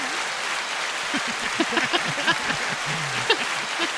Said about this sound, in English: There you go. They're applauding nice.